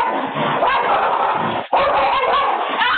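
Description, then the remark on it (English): A pit bull and a little dog named Max bark, snarl and growl in a frantic, nonstop fight in a neighborhood, loud, with only a split-second pause midway before the chaotic fighting noise surges again. “But then her little dog Max comes out and all hell breaks loose.”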